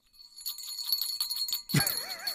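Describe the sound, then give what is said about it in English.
Jingle bells shake in a quick, steady rhythm of bright metallic tinkles. Near the end a louder ring with a dull thump cuts in, leaving a wavering, shimmering tone. “Like the bell from Polar Express. You know, it's doesn't like it? That single magical bell. A so they're all jingle.”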